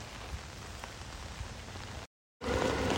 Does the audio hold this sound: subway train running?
no